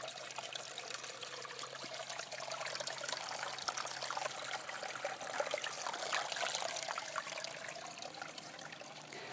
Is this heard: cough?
no